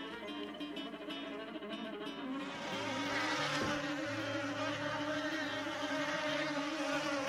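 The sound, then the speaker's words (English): A loud insect buzz drones continuously, its whiny pitch wavering slightly and thickening partway through, like a fly hovering. No voices. “Do you hear that? It's time for Business Buzz”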